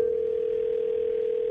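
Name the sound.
telephone call ringing through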